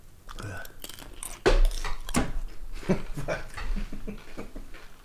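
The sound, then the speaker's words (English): A person chews food right against the microphone: wet chewing and crunching with repeated bites and smacking sounds over a few seconds, loud and intimate with faint background murmur. “I like get closer to the mic once I start chewing.”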